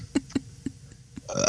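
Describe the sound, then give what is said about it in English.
A quick series of about five short burps in an uneven rhythm, followed by a brief burst of brighter, louder sound at the end. “Oh, I'm burping from my pudding foot.”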